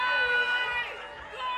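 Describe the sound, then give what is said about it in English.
A live crowd of people not from the Caribbean roars and cheers, making noise on request, in a dense, sustained wash of many voices, holding steady and fairly loud for the whole moment with a slight dip midway. “If you're not from the Caribbean, make some noise.”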